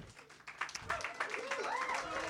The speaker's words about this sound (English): Why are you applauding? Is that for me? Oh, cool. Thank you. I was like, why are they applauding?